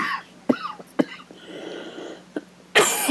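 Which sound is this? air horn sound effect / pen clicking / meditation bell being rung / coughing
coughing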